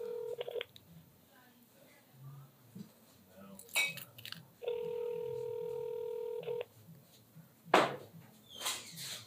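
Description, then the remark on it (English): Telephone dialing tones, short beeps and clicks as a handwritten phone number is dialed, followed by a single long steady ringing tone lasting about two seconds, with faint handling noise and sharp knocks near the end. “Come on, Jeffrey, answer the phone.”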